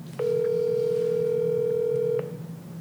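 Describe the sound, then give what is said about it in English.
A single steady electronic telephone ring tone sounds for about two seconds as an outgoing phone call rings out unanswered, a flat mid-pitched buzz over a low background hum, then cuts off. No voices are heard. “No, you're gonna have to call him again. Call him one more time.”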